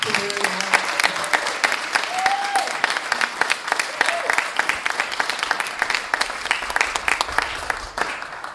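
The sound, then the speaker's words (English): An audience applauds the people who organized the event steadily for several seconds, dense overlapping claps forming a bright, sustained wash of sound with no pauses, a few faint voices briefly audible underneath early on. “I mean, maybe we could just have a little round of applause right now for the people who organized this, put it together.”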